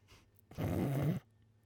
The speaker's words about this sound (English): Yeah, there's like that lady that made a remix of her husband's snores. I'm pretty sure that's on Spotify.